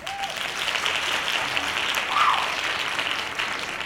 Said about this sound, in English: Hand claps.